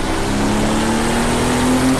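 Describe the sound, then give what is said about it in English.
A racing car engine roars loudly for about two seconds as the driver brakes and drops down to third gear through Eau Rouge, the car sliding sideways; its pitch holds mostly steady and rises slightly, with dense mechanical noise and no voices. “Even with application of the brakes and dropping it down to third gear going through Eau Rouge, it still got real nasty and got sideways on me, so hopefully we can hold it together for the rest of the lap and see what we can do here.”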